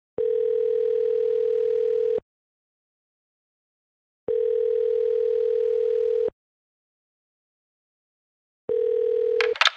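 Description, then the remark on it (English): A steady telephone tone sounds in three long, evenly spaced bursts separated by silent pauses, clear and fairly loud, as someone makes a phone call. A brief crackle cuts in at the end of the last burst. “Let me phone my other boy”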